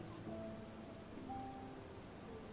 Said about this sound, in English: Puddles have formed on the outside near the edge of the platform, and you can see the ever-decreasing circles from where the raindrops touch the water's surface.